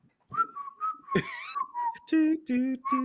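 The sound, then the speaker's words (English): Someone whistles a short, easygoing hold-music-style melody, gliding between steady notes, with a few hummed or sung tones joining toward the end. “Elevator you know music. That. It's hold music.”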